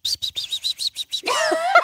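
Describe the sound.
A voice mimics bird chirps: about eight quick, evenly spaced high peeps, then a continuous twittering warble, fairly loud with no talking.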